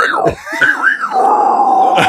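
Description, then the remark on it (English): A voice imitates a death metal growl announcing a song title: a gravelly, wavering groan that dips and rises, then settles into a long, steady drawn-out note, with no clear words. “I love death metal bands who announce their song name in like a death metal growl that no one understands.”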